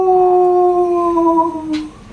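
A single wolf howl, one long sustained tone that holds steady and then slowly slides downward in pitch before trailing off, heard alone with no talking.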